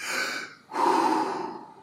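A deep, audible breath drawn in as a breathing exercise demonstration, a breathy hiss lasting nearly a second, followed immediately by a fuller, rushing breath of air. No talking.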